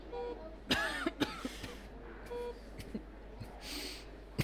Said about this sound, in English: Shouldn't even have a cough.